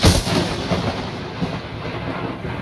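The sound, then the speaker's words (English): A loud crash of thunder bursts in at the start, then rolls and rumbles on steadily as a deep, sustained boom with no voices present. “And after only a second, it seems, there's a blast of thunder and you find yourself standing in front of the compound.”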